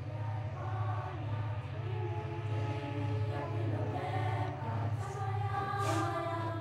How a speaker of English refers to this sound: This train has no first-class carriages, and it rides on some of the oldest track in South Africa. It's called Pilo Pepper, or the Good Health Train.